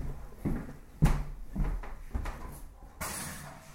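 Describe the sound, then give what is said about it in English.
A door is pushed shut, with a sharp thud about a second in, surrounded by soft shuffling and scraping, then a brief hiss of background noise near the end. “Let me close the door because the numbers are yakking.”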